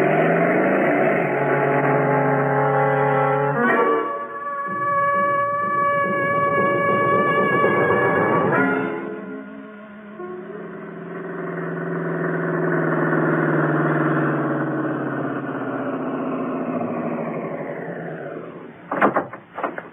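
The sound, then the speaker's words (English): A motorcycle engine roars loudly and continuously for about twenty seconds as the rider chases a car, its pitch climbing and dropping as it revs and shifts, ending with a few sharp clatters; no one speaks. “Lend me your motorcycle.”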